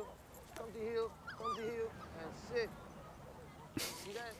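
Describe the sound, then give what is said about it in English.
A small dog whimpers and yips, a run of high, whiny squeals and short cries with a sharper yelp near the end, over a busy background. “With the little dog.”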